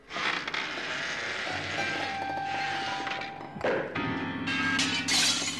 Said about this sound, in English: To the alarm of the assembled company, from the conservatory comes the unmistakable sound of a Brummy abattoir owner engaging so thoroughly in sexual congress that he's pushed a grand piano through a plate glass window.